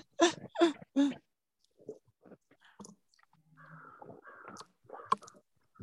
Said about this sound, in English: Someone has crows at their home.